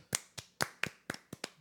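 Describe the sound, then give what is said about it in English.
Several sharp hand claps ring out in a quick, slightly uneven rhythm, like a brief bit of applause from one or two people, with no talking over them. “Well, clearly, because she got frisky, and I want a round of applause, so I got road dome for the first time.”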